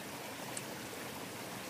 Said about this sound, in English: And just the river is just so mellow today. It's so inviting. It's just trickling along so beautifully.